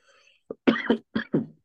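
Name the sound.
cough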